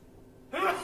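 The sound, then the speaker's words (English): A single sudden sneeze bursts out after a moment of near silence, a sharp, breathy, voiced blast that stays fairly loud to the end. “Bless you.”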